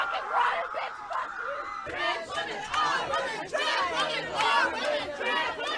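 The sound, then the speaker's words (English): A mob of transgender activists yells and chants at once as police escort a woman away, loud and continuous, with overlapping shouts rising and falling in rough rhythmic bursts and no single clear voice standing out; the chant is "Trans rights are real rights." “Attacking her, yelling, screaming.”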